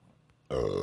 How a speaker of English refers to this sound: Oh, schnazzy. I got my burp on.